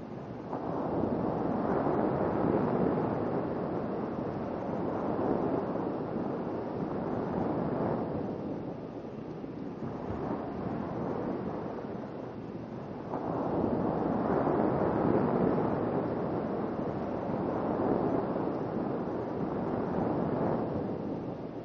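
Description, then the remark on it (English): Steady surf washes onto a shoreline, with broad rushing swells building and receding every few seconds in a continuous, enveloping roar. No voices are present. “Beauty of the sea engulfs you.”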